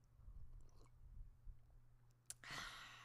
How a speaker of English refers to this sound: So let me just take a sip here.